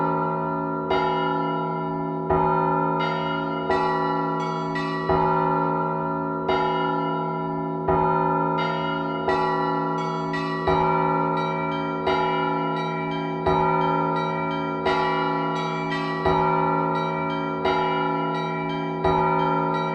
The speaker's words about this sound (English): His new … features the sounds of more than 40 belfries played live and sampled